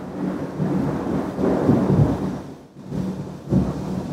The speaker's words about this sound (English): Oh, I just heard lightning strike through. Oh, God. Oh!